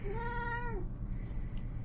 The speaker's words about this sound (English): Oh, here's the cat.